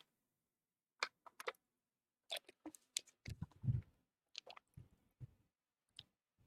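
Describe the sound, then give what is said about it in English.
Someone drinks water: a run of wet mouth clicks, slurps and squishy swallowing gulps spread across several seconds, with quiet pauses between and no talking. “I'm gonna drink some water”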